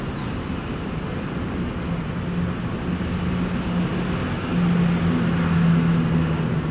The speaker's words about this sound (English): And that's one of the buses going by.